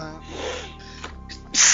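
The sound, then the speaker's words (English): A person sneezes: a drawn-in, wavering breath builds for over a second, then bursts into one loud, sharp, hissing sneeze at the very end. “Bless you.”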